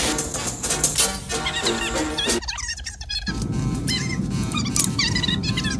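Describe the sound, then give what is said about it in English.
A fast-forward playback effect: voices sped up into a chattering rush of high-pitched squeaks and chirps, with a brief smeared burst partway through, loud and continuous for about six seconds. “Fast forward. Fast forwarding, sir.”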